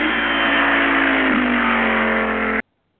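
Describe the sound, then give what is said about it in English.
An army jeep engine revs loudly and steadily, dipping briefly partway through before droning on, then cuts off abruptly into silence. “Your car is an army jeep”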